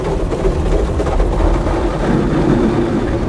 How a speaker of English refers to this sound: I do apologize, I'm in the car wash.